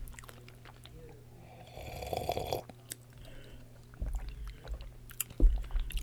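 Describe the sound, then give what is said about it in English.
Crunchy chewing of cheese-flavored Doritos tortilla chips, eaten alongside wine, with a burst of crisp crackling bites early on and a few sharper crunches later, over a low steady background hum. “Okay, so you're going to eat your Doritos.”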